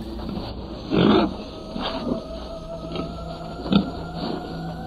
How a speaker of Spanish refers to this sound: Y lo más sorprendente fue de que esta grabadora, estando en cierta posición, ya se había quedado todo en silencio, se acercó algo, un animal, y yo escuchaba como si fuera un cerdo, animal, puerco.